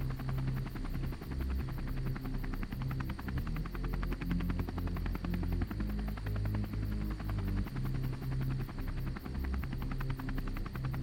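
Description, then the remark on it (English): A helicopter leaving and pulling up the flatbed of a truck: its rotors thump in a rapid, steady chop over a deep engine rumble and whine, staying loud throughout with no voices. “As this helicopter is leaving, like, it's literally, like, this thing is pulling up.”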